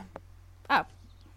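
A single short, sharp cough up close, loud and abrupt against a quiet background with a faint earlier click.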